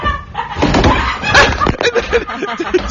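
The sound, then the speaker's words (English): A wooden bench at a table gives way with one loud, sharp cracking crash partway through as a man sits down on it and falls, set against a busy background of muffled voices and clatter. “To add insult to injury, did you hear that big crash at the end? Yeah, I did.”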